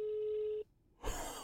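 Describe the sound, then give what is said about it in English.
A phone ringback tone through a speakerphone held up to a microphone: one steady, buzzy tone lasting about half a second, a brief silence, then a burst of loud breathy noise at the microphone. “We'll see, because, like, it's going to be that far and dial tone now. If it actually rings”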